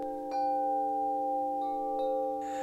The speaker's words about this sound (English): Okay, this is where we put in like a little, like, you know, one of those, like at the start of yoga. A sound effect? Like the little gong. Yeah, sound. I'll put one of those in there. Here, okay. I'll hit one right now.